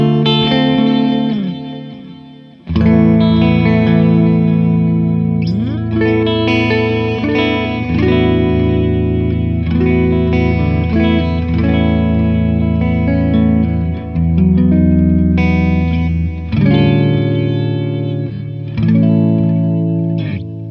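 Electric guitar played through a tape echo, notes repeating and trailing off in warm, slightly wobbly repeats. Loud, with sustained chords and melodic lines blurring together, no talking.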